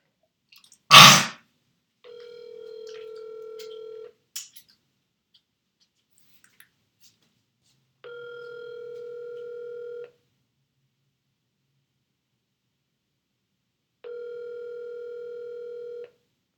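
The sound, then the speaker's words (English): A sharp click like a phone being picked up, then a telephone ringing tone buzzing in three steady two-second bursts with long silent gaps between, clear, no voices. “I have to use the other phone.”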